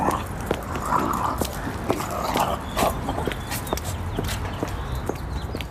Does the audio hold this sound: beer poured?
no